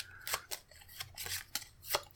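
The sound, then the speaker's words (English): A small stack of playing cards being shuffled, with quick, crisp papery flicks and snaps repeating in short uneven bursts. No one speaks. “It's really hard to shuffle a very small amount of cards.”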